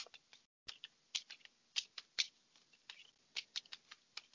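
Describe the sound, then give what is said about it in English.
A deck of cards being shuffled, with quick crisp riffling bursts and sharp clicks in an irregular rhythm, fairly quiet and without any voices. “So I'm going to go ahead and again, just get quiet for a moment and, get in sync with my shuffling, kind of recalibrate the deck.”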